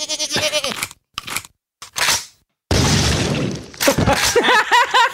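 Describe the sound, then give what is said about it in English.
A video game goat bleats in wavering cries, followed by loud, wet crunching and splattering as it is killed, with short silent gaps between bursts and bleats returning at the end. “I want to hear the goat being murdered.”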